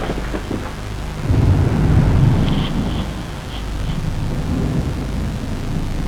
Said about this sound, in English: as it were, the noise of thunder.